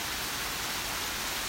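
Steady rain falls in a park, a continuous soft hiss of drops with no distinct individual splashes, moderately quiet and unbroken throughout, with no voices.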